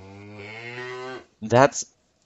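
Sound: cow mooing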